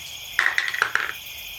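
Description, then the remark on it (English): New dice rolled during a tabletop game, a roll to aid that comes up a natural one, heard alone as four quick, bright clacks on a hard surface with a slight ringing tone, bunched into about three-quarters of a second before settling to quiet. “I rolled a natural one, which is the bottle on the new dice.”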